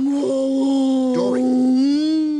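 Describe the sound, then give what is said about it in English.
A voice imitates a whale call, as the character Dory speaking whale, with one long, drawn-out moaning tone held at a steady low-to-mid pitch, wavering briefly in the middle before sliding slightly upward at the end. “Are you sure you speak whale?”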